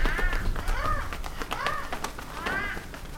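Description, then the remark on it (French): A flock of black birds circling over a village in the evening caws repeatedly, harsh calls overlapping and recurring every second or so, loud over a steady rumbling background. “Ce soir-là, un vol d'oiseaux noirs commença à tourner au-dessus du village.”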